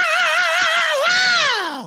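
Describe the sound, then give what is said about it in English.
A person lets out a loud, sustained scream lasting about two seconds, holding a wavering high pitch before sliding downward and trailing off at the end. “Like a good scream.”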